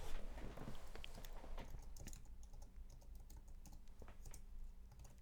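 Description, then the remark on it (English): Rapid, irregular clicking of keys on a computer keyboard as someone types a search for noise stick toys, steady for several seconds over a low background hum, with no voices. “I just searched noise stick toys.”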